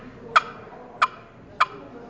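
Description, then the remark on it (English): Three sharp, raspy turkey clucks imitating an old hen, made on a Turpin-style box call, evenly spaced about two-thirds of a second apart, clear over a faint background with no talking. “I really like the rich rasp of the old hen that it puts out in the cluck, and this is a cluck.”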